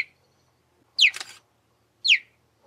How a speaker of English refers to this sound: And here's a cheetah talking to its kids.